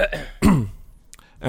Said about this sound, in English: God damn it, why can't I speak? Clear your throat and sip some water.